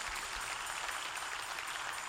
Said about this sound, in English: Give them a rousing applause.